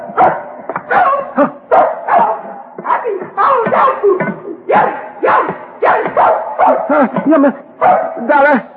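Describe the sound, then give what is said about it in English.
A dog barks and yips in a rapid string of loud bursts, its voice rising and wavering into whiny, almost talk-like howls for several seconds. “do you hear? She saying, happy holiday, dog food.”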